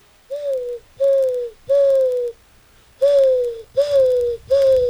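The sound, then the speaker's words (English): A person imitates a dove's coo with six smooth, sustained hoots in two groups of three, each a slightly falling tone, fairly loud with short pauses between. “All right, ready, dove?”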